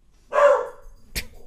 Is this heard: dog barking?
yes